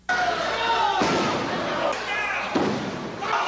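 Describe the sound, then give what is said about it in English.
Two heavy chokeslams, a wrestler grabbing an opponent by the throat, lifting him into the air and slamming him onto the wrestling mat, about a second and a half apart, each a loud, booming crash rising over a steady, noisy crowd roar. “now we got 911 fucking choke slams”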